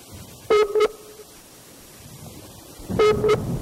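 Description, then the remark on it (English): Two short electronic phone-line tone bursts from a phone call that is not going through, about two and a half seconds apart, each a steady buzzy pair of pitches over a faint hiss of line noise, with no one speaking. “is your phone working? Doesn't sound like it's working.”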